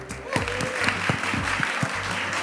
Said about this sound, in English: And most importantly, we should thank you guys for putting up with us, bearing with us, and clapping where you needed to. So give yourself a big round of applause, everybody.